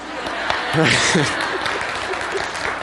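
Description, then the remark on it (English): An audience claps steadily for about three seconds after a joke, a dense wash of applause with a brief burst of laughter and voices rising in the middle. “Always get a big clap for those jokes, right?”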